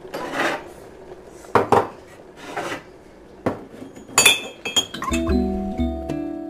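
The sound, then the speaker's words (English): Several sharp clinks of cups and dishes, then a steady stream of hot water pouring into a cup with a sustained, ringing tone for the final second or so. No one speaks. “I need to pour the hot water.”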